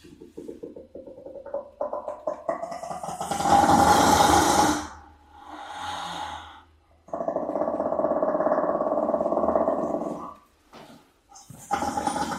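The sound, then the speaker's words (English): A shaggy-coated brown hyena, the rarest hyena species, vocalizes in a series of harsh, growling calls: an opening stretch of low grumbles, then a loud raspy burst, a shorter squeal, and a long buzzing, droning growl that fades out. “So we usually associate these animals with laughing, but this sound is coming from a shaggy-coated brown hyena, the rarest of the hyena species.”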